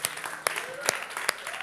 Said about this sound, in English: Give him some encouragement, ladies and gentlemen. We can keep these rousing applause going